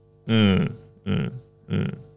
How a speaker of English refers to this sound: But feel free to burp on mic. This is a burp free. We burp freely here.